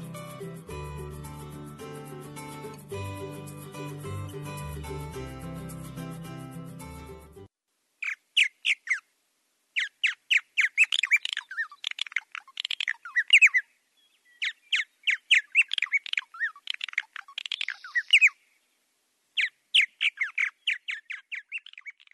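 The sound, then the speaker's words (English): A short stretch of music ends, then a bird calls on its own in rapid bursts of harsh, squawking chirps, repeated in tight groups with brief pauses between them, clear. “I think we've got one more bird call this break, and then we'll try to find the indigo bunting as well.”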